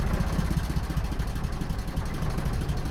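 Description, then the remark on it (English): The engine of the small ferry boat Margaret idles at Balmahar Boatyard before crossing to Inchcailliac Island, a steady low throbbing rumble with a faint regular chug, holding an even level throughout with no voices. “I'm walking through Balmahar Boatyard towards a small boat that will take me to a magical island.”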